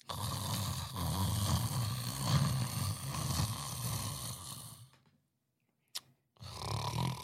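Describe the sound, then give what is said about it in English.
A wrestler in the middle of a wrestling ring at an arena in Tulsa, Oklahoma, imitates loud, drawn-out snoring, with rough rattling breaths lasting several seconds, then a short pause, a brief sharp sound, and another snore-like breath. “snoring in the middle of the ring”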